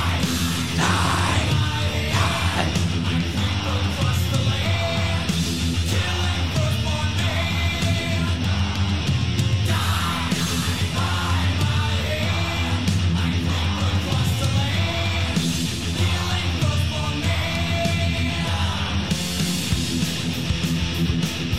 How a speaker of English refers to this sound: Yeah, you haven't been to a concert until you've heard that. Yeah. 50,000 people at one time screaming.